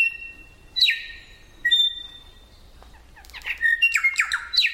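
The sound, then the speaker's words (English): Clear, ringing song of a New Zealand bellbird (korimako), an 8-inch mossy green bird: a few pure bell-like whistled notes, then a quicker burst of liquid chiming and warbling phrases, fairly loud with no other sounds. “New Zealand Bellbird”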